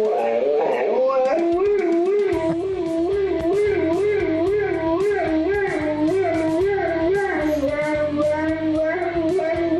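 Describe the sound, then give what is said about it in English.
A dog howls steadily, mimicking a siren it hears, its voice rising and falling in a wavering, siren-like wail that carries through the whole stretch, with a low rumbling hum underneath. “Mimicking the siren.”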